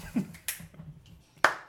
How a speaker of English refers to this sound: That was just a weak-ass clap. You didn't sense that when no energy on that one.